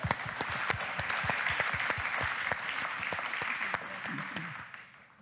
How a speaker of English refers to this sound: You can clap for them, too. I like them.